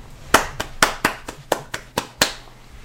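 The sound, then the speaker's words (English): A clapping sound effect: about nine sharp hand claps land at an uneven, loose rhythm, each a bright crack that fades quickly. There is no cheer or voice, only the clapping over faint low hum. “Don't you wonder who that one person is who is on the clapping sound effect, who's like, whoo!”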